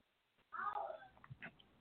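A single drawn-out meow from a male domestic cat, moderately loud, followed by a few faint shuffling and clicking noises.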